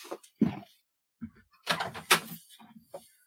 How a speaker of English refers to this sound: Hey, dude, can you give me a second? I think I hear somebody pounding at the front door.